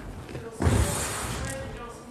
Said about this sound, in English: I think I need to sit down in a minute, but anyway. Just let me put a chair here in case I need to sit down.